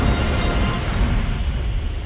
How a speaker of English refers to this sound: Chinese amphibious landings are preceded by a deluge of fire. Explosion roaring violently, shattering windows of buildings.